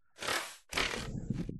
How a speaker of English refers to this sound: And, oh, shoot, I can hear my cat getting into something.